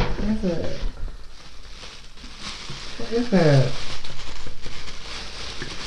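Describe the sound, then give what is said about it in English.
Continuous crinkling and rustling of crepe paper as a gift wrapped in a plastic bag is torn open, with a couple of brief voiced exclamations breaking in over the steady crackle. “That's crepe paper. It's a plastic bag.”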